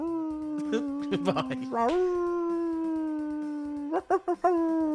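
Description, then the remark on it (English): A human voice imitates a wolf howl: one long, sustained, fairly loud wail that holds its pitch, rises briefly partway through, then carries on with a few wavering breaks near the end. “Oh, real wolf.”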